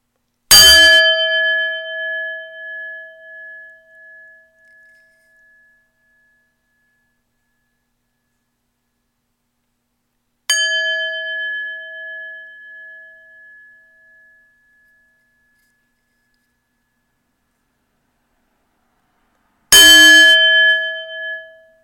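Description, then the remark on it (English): A bell is struck three times with long silent gaps between strikes, each a different tone: one loud, one short and one medium. Each clear, ringing tone fades out, and the rings differ in how long they last, from a lingering ring to a shorter one. “Now I'm going to ring a bell with varying tones.”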